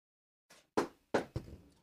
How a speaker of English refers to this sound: If I'm the evil boss, I'm doing something, then I knock on the door or something.